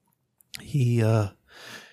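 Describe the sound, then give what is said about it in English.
A horse in a stall snorts, its breath steaming: a sharp breathy burst rolls into a low, buzzing blow through the nostrils, followed by a softer trailing exhale. “Peering inside, like you can see that some light is shining in, reflecting off of the two wet eyes of this horse. It snorts.”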